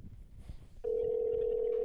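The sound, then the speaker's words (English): A phone call to the speaker's brother ringing: after a brief stretch of low background noise, a steady, single-pitched electronic tone starts abruptly and holds unbroken to the end, with no one speaking. “Anyway, so I'm going to call my brother now and then we're going to get this crack-a-lackin'.”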